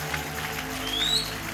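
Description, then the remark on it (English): An audience claps in praise of the Lord in a steady, dense wash of applause that holds at an even level throughout, with a low sustained tone humming underneath. “Come on, give the Lord a clap of praise.”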